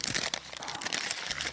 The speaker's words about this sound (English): Get your fill there, people. That was really good. We're going to bring that back at the end of the show. People are just like in this heightened state of like, oh, bring me more of that paper crinkling. The paper is amazing.